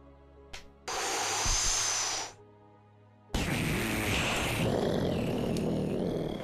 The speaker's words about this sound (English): And you all can see and hear very, very slow and guttural breathing.